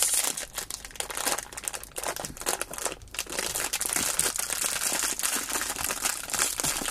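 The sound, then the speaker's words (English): A plastic bag of Twizzlers key lime pie filled twists crinkles and rustles as it is pulled open, a dense, continuous crackling lasting several seconds with no talking. “They, of course, you know, open like any bag of Twizzlers, which you're supposed to do 5 minutes into the movie.”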